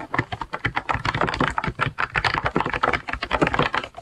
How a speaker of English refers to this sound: It's an Acto keyboard. Oh, yeah. Duh. And guys, it's like a retro looking keyboard and it sounds so good. Yeah. And I'm I'll throw in the sounds right here.